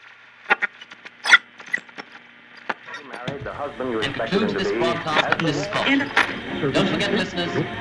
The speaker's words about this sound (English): The sound of the building's elevator doors is just as underwhelming as the sound of the building's front door, but we've included it in the podcast for door completists.